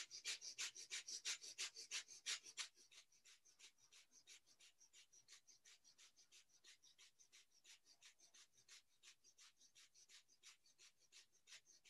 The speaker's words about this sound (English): And we're going to do some rapid breathing in and out through the nose. Pumping the navel.